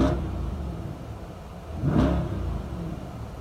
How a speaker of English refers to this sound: Sounds great, man. I tell you what, you want to talk about a car that gets you going, it is the 2021 Corvette. There's a sound, there's a feeling as you're sitting in this car that is spectacular.